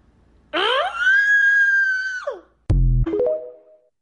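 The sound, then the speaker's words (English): A woman lets out a loud, high-pitched scream that holds for about two seconds before trailing off, followed by a short low thump and a brief, shaky high cry. “Yeah, I didn't need the scream at the end, but I know she's kind of hot though.”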